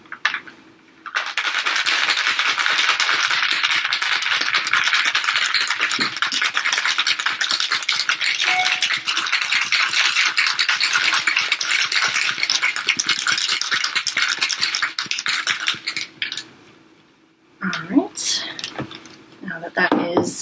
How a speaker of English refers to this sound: Once you've shaken that aggressively for about 15 seconds, you will add in the ice. And the top back on and shake it for about 15 seconds again.